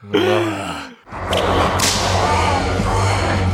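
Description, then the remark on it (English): A loud whip-crack sound effect snaps out after a brief tonal cry, as Doug strangles a hooded warlock with a whip and throws him off a cliff, followed by a sustained, noisy rush of sound with a sharp accent partway through. “And now the house, when he reaches the top, it turns into a hooded warlock who, like, yells at Race Canyon, and then Doug strangles him with a whip and throws him off a cliff.”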